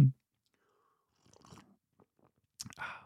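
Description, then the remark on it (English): Quiet mouth noises and soft clinks lead into a short, audible slurp of hot black tea near the end, with no one talking. “Let me take a sip.”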